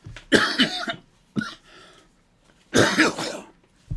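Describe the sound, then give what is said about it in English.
A harsh coughing fit: a cluster of rough coughs, a short pause, a single cough, then another burst of hacking with some throat clearing, no talking. “I have done everything I can take this cough, but now I'm actually having to talk.”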